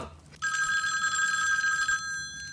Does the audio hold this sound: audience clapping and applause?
no